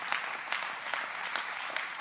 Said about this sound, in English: Oh, come on, clap your hands to the Lord and praise him right now.